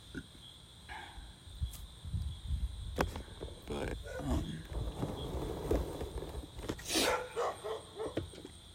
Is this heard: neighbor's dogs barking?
yes